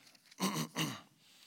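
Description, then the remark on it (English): A person clears their throat in two quick, rough bursts, a gravelly rasp followed by a second push, with no speech around it. “I apologize for clearing my throat nonstop.”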